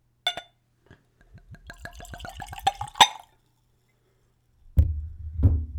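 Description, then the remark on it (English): A click, then whiskey glugs from a bottle into a clean Glencairn whiskey nosing glass in quick, accelerating gurgles for about two seconds, followed by two dull thuds. No one speaks. “So I've opened it, I've tried it, but of course I'm going to go for another pour.”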